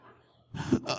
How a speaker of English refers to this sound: That was just clearing my throat.